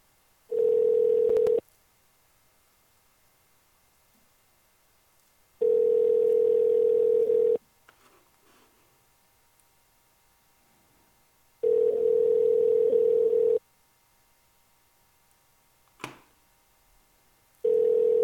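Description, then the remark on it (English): A steady, low-pitched telephone tone sounds in four even bursts of about two seconds each, separated by longer silences, with a faint click in one gap and no voices, as a caller rings a 7-Eleven back after being disconnected. “And I'm calling them right back.”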